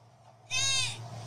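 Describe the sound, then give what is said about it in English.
A single loud, quavering goat bleat at night lasting about half a second, clear, rising suddenly out of a quiet background with a steady low hum underneath. “That sounds like a goat. That's a goat.”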